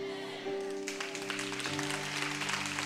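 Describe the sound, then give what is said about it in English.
An audience breaks into steady, dense clapping that swells in after a moment and continues throughout, over sustained organ-like chords holding underneath. “While you're clapping, I just want you to stand to your feet.”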